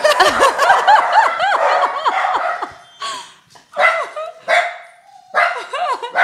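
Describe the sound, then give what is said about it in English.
Several dogs, one named Chief, bark and yelp wildly, their high, rising-and-falling cries overlapping in a dense, loud chorus that breaks into separate excited bursts with brief pauses between them, scaring people away. “Dogs are gonna go wild.”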